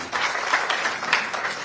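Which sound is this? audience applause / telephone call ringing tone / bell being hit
audience applause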